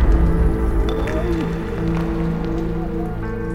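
Water dripping in scattered, irregular drops over a steady low hum, with small sharp splashes popping out now and then. No one speaks.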